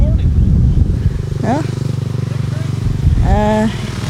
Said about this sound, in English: Motorcycle passed. What do they call that? Pussy... No, what are they called? Crotch rocket, that's it. Crotch rocket.